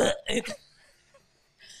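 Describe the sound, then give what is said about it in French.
A loud burp breaks out in three quick guttural pulses, then gives way to near silence with a faint hiss toward the end. “Ah, mais je t'ai entendu roter en même temps.”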